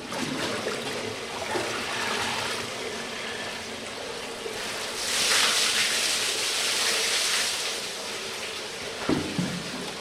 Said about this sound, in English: And also your body tell it's enough, you put icy water on your body.